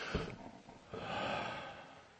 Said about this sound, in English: But the first thing I want us to do, and you do this with me, just take a big breath.